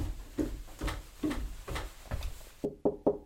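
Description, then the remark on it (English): A steady series of about nine knocks on a pastor's office door, hollow thuds at a slow, even pace, the last few sharper and closer together, with no voices. “First door on the right. Just give him a knock and he should be available.”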